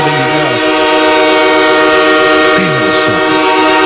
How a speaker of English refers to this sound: Every hour on the hour. Trains come by my house every hour on the hour as it stands right now.